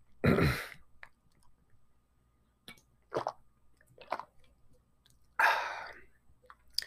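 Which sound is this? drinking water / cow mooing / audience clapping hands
drinking water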